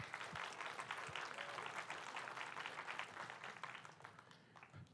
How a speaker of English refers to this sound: Yeah, you can clap.